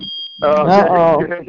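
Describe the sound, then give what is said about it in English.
A smoke alarm, set off by smoke from bacon, sounds a steady, piercing high-pitched tone throughout, while a voice breaks in partway through and speaks loudly over the continuous shrill alarm. “Somebody, your alarm done went off.”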